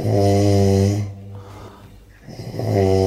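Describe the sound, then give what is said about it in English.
Loud, droning snoring of a man nominated for Adelaide's Greatest Snorer, with a deep foghorn-like tone: a long rumbling inhale, a quieter breathy pause, then the heavy honking snore starts again, forceful. “It sounds exactly like a ship's horn.”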